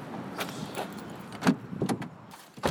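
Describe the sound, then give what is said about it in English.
People climb into a car, with shuffling and faint jingling, then a few sharp thumps as a car door closes, the last thud near the end. “We get back in the car and drive back to Tulane and Broad, where the courthouse is.”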